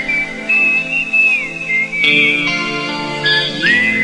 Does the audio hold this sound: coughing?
no